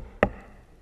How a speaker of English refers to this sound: The master of the house is not beating the door down. He's knocking.